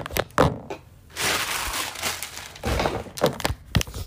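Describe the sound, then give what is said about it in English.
Wrapping paper being crunched up: a run of dry, crackling crinkles and rustles with a few sharper thumps and snaps, fairly loud, with no talking. “Sorry, I'm about to crunch up this wrapping paper.”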